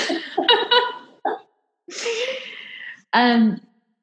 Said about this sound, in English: I got a dog sneezing. I was wondering what that was. He woke up and just started sneezing. Bless you.